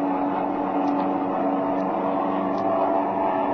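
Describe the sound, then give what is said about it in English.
A steady, continuous airplane engine drone in flight holds at an even, fairly loud level throughout, with a constant hum and no voices or other distinct sounds. “Here, I'll pull in closer and throttle this engine.”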